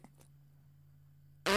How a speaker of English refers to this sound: This YouTube video with all these farts